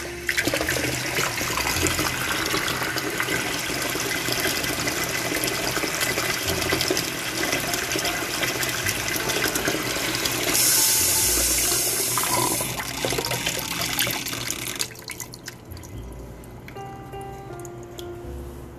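Fresh water runs steadily from a tap for about fifteen seconds, a loud, splashing rush with a brief hissing surge near the end, then it's shut off, leaving a few quiet drips.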